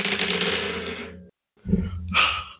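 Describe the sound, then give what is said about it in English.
Dice clatter and rattle across a hard tabletop in two close, busy bursts separated by a brief silence, with no voices; the roll comes up a 4 and a 6. “That was a 4 and a 6 on the dice.”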